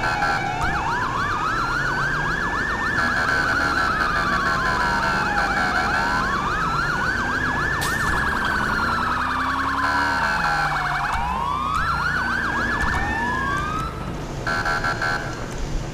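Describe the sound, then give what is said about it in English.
An emergency vehicle siren in a video game, redone to sound like real local sirens, wails loudly and continuously, its pitch sweeping slowly up and down in long cycles, layered with a faster warbling tone over a steady rumbling background, in rain, with no one talking. “For those that are new, I redid the sirens. Sounds similar to the sirens here, where I live.”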